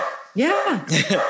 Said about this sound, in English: So I have moral qualms with that as well, because there's my dog barking.